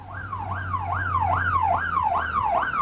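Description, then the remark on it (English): Police sirens in a TV show's theme music wail in a fast, repeating rising-and-falling sweep, about six cycles, loud and steady over a low engine-like hum, with no voices. “You got it from the sirens alone.”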